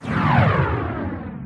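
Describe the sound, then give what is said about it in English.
A single loud whoosh transition effect, a broad rushing sweep that slides downward in pitch and tapers off over about a second and a half, with no talking. “Whoosh. Whoosh.”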